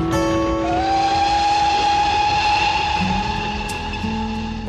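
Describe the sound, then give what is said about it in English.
A miniature ride-on train rolls along steadily, its continuous mechanical rumble layered with sustained humming tones, loud throughout with no one speaking. “It also extended to trains, miniature ones that you could ride on.”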